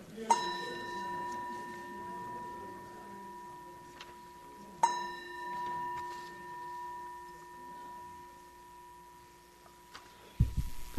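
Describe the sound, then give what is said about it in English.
A bell is struck twice, about four seconds apart, each strike ringing out in a long, clear, steady tone that lingers and slowly fades, with faint background murmur underneath. “Yeah, why don't you ring the bell?”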